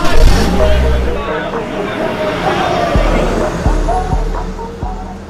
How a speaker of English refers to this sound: The car ride home is very quiet. No one says anything.